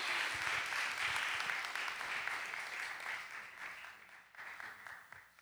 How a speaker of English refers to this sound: Could you guys give him a warm South Florida round of applause, though, as he comes up here to lead us tonight?